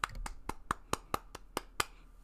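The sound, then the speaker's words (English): One person clapping by hand as a homemade round of applause, about eight sharp claps at a brisk, slightly uneven pace, moderately loud with no talking over them. “I would put a sound effect, like, clap there, but I am honestly too tired to find one, so you get a deal with my homemade clapping for now.”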